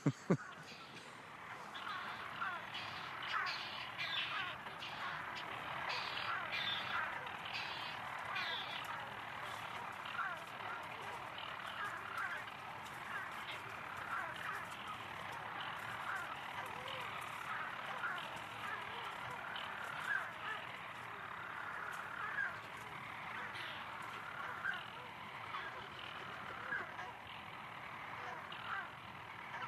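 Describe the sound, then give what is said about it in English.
Dense, unbroken chorus of petrels calling at a nighttime colony in half-light in Western Europe, many overlapping cackling and crooning calls at a steady level. “I think we're now hearing another bird coming in as well, because in the kind of half-light we heard quite definitely predominantly petrels, but now there's another call.”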